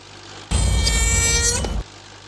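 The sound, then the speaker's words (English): A regular saw scraping across glass, a sound effect for the film The Texas Chainsaw Massacre made by sound man Wayne Bell, makes one loud, harsh grinding screech with shrill, wavering overtones. It holds steady for over a second, then cuts off abruptly, with no voices. “The guy Wayne Bell was one of the sound men, and I think it was just using a regular saw against a glass. I think that was one of the effects.”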